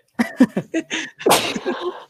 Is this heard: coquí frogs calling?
no